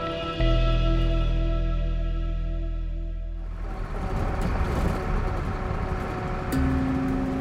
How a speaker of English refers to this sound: He rubs his eyes and sees that the OES school bus has just entered the Timberline Lodge parking lot here at the base of Mount Hood.